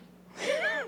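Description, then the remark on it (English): A single sneeze bursts out suddenly after a brief quiet moment, a loud breathy blast with a short voiced, falling tail and no talking around it. “excuse God me? Bless you.”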